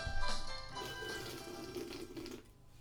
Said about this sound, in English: That was me taking a sip of sparkling water. Victory. That definitely deserves a victory sip.